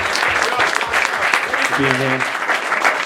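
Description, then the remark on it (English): An audience claps steadily for a few seconds, a dense, loud wash of overlapping hand claps, with a brief voice and a short tonal hum rising through the applause. “So clap it up one time for my man.”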